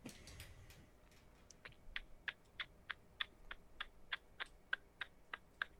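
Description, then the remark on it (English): A voice mimics a ticking clock with sharp mouth clicks, about three per second in a steady, even rhythm, moderately loud, following a brief soft rustle at the start. “That was a killer clock noise that you just made with your mouth.”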